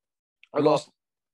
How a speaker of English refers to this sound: This might be my internet that's playing up. This phone. It's the Wi-Fi. It is the Wi-Fi now. Just dipping.